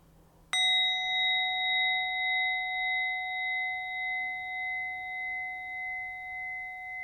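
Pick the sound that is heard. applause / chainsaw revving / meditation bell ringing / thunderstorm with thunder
meditation bell ringing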